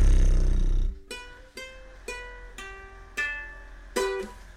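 A power tool, being used in the background, whirs in short bursts, five buzzy, tonal motor pulses, each starting sharply and tapering off, after a second of low rumbling noise. No one speaks.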